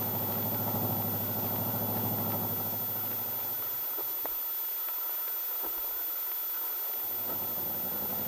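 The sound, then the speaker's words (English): A nice new car's engine idles with a steady, low rumbling hum, cuts out for a few seconds midway with a couple of faint clicks, then returns. No one speaks. “And thanks for bringing us home in your nice new car.”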